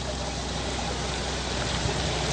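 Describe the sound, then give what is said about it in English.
Steady rain pours down outdoors in Gore on a very wet day, a dense, continuous hiss of drops with a watery, trickling undertone, fairly loud and unbroken throughout with no voices. “So it's a very wet day here in Gore.”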